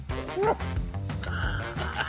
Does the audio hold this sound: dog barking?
yes